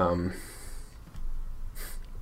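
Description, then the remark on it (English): Labored, heavy breathing: a brief voiced catch, then two harsh, airy breaths with a pause between, from someone struggling to get air after swallowing Blue Bell chocolate peanut butter cookie dough ice cream the wrong way. “I'm breathing because I can't breathe. I was eating ice cream earlier and I swallowed weirdly.”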